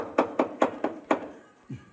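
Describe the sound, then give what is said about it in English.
Five quick, evenly spaced knocks on the door of a room across the hallway where a bachelor party is playing music, fairly sharp and moderately loud, followed by a pause and one softer, duller thud. “You gonna knock on the door?”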